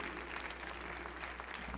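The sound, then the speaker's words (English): A church audience claps in appreciation to thank its evangelists for being with them for the past three weeks, a steady dense wash of many hands applauding together at moderate volume, with no voices standing out. “us to just take a moment and thank our evangelists for being with us these past 3 weeks by a hand clap of appreciation.”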